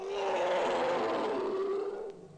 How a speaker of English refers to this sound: not to a leopard or a member of the cat family at all, but to the Indian elephant. Here it is again. More famed is the elephant for its trumpeting. And yet, its roar is one of the loudest animal calls in the world.